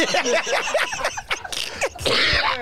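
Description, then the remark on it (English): Harsh, sputtering coughs come in several ragged bursts, with gasping breaths between them, from someone choking on nuts. The bursts grow noisier toward the end. No clear speech. “I've been wanting to cough. You gave me a good reason. I'm choking on nuts.”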